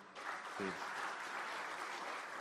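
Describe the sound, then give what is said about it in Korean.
A crowd at a Democratic Party (Minjudang) gathering breaks into steady, sustained applause for the party leadership during a candidate's speech, a dense wash of clapping that holds at an even loudness throughout, with a brief voice-like murmur near the start. “지금 비상시국인데 당을 이끌고 계신 우리 지도부 분들께 박수 한번 부탁드립니다.”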